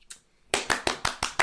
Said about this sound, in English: Clap it up. That was like both of our immediate. Yeah. That wasn't even scripted. That is an appropriate reaction.